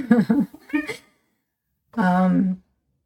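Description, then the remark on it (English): A cat meows: a couple of short, wavering cries, then, after a brief pause, one longer drawn-out meow. The calls are fairly loud and clear, with no talking. “And my cat is meowing in the background.”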